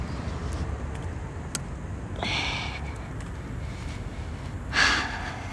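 A steady low rumble of road traffic runs throughout, with a couple of brief hissing swells as vehicles pass, one around the middle and a louder one near the end.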